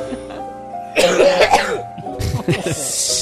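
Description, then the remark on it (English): A wet, phlegmy, productive cough rattles out in a couple of harsh bursts, followed by throaty clearing with a gurgly, congested texture. “I just have a lot of phlegm. It's a productive cough, so that's good.”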